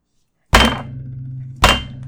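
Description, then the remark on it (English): Two heavy thuds against the engineer's booth window, about a second apart, each loud with a low resonant hum ringing on between them. No voices. “Some sort of force is banging on the... Oh God, on the engineer, on the booth window.”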